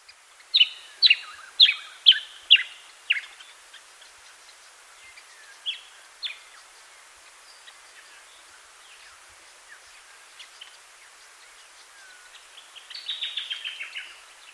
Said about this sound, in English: Yellow-faced honeyeaters make a contact call that sounds a bit like chick or chick. This recording is by Greg McLaughlin in Mishilago, New South Wales, on Narigo country.